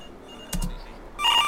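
A couple of quick sharp clicks, then a bright electronic telephone ring starts up near the end, loud, with no one speaking; a reception telephone in an audio game.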